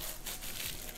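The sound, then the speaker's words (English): A silicone baking mat is handled while making caramel, giving a continuous soft crinkling and rustling sound for about a second with no talking. “silicone mat here. You can also use baking paper.”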